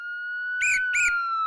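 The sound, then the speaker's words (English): Police car sirens outside wail with a steady, slowly rising tone that grows a little louder, broken by two short, harsh blasts in the middle. No voices. “Hey, what's that? Police cars. They are outside.”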